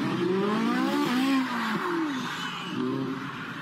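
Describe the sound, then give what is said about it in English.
A Ferrari 458 sports car engine revs hard and loud, its pitch swooping up and down over several seconds amid roaring road noise, as the driver jumps a curb and crashes into an embankment at a car show. No clear impact stands out, and no one speaks. “The driver of a Ferrari 458 owned by a Houston-based law firm was filmed jumping a curb and crashing into an embankment at a car show.”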